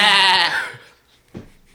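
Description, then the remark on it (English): A voice does a loud, nasal goat bleat, one wavering cry lasting about half a second that quickly fades, followed by a short low grunt. “A kid is a goddamn goat. Are you a goat?”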